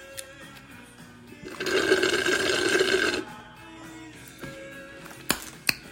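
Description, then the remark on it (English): Water pours into a cup of mango-pineapple lemonade in one steady stream lasting under two seconds, then stops; a couple of sharp clinks follow near the end. “She is tart. She needs some water.”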